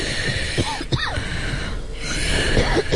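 A woman coughs and clears her throat in a few rough, raspy bursts over a steady hiss, with wheezy, labored breathing between them and no talking.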